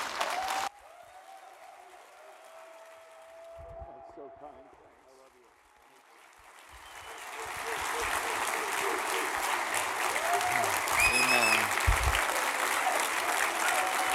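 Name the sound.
audience applause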